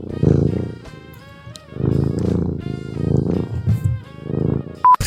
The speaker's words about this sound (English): Oh my God, did you hear him purring? He came up and he was like...